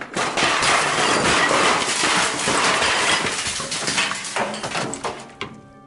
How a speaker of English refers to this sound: Oh, whoops. I was just sweeping with my broom and I knocked over all of your equipment and broke it. Sorry about that.